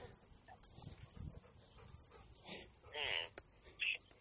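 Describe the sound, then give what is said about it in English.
A few sharp dog barks come in quick succession near the end, after a stretch of low murmuring background voices; two dogs that live in the same place, one barking at Ruffy and the other barking at that dog. “And the one dog barks at Ruffy, and then the other dog barks at the other dog for barking at Ruffy.”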